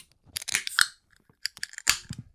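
A 16-ounce beer can, 5.2% ABV, pops open with a sharp metallic click and a short burst of fizzy hiss, followed by a few quieter clicks and a second crisp snap near the end.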